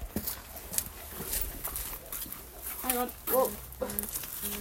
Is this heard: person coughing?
no